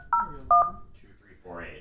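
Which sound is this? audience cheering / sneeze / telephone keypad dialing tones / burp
telephone keypad dialing tones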